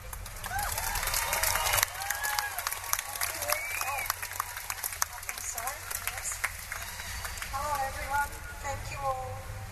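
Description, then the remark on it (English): A crowd applauds steadily as a speaker is welcomed. A dense rattle of clapping runs throughout, with scattered whoops and cheers rising above it and voices mixed in, strongest at the start. “What an amazing crowd.”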